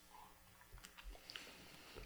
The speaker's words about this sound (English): So let me take a little sip.